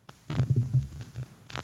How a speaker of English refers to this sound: are you having some popping issues going on with your microphone?